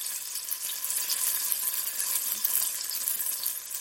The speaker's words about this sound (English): The eggplant fried, our sauce comes together in just minutes. Garlic, ginger, chili bean paste, sugar, soy sauce, water, vinegar, all simmer together, thickened by a potato starch and finished with scallions.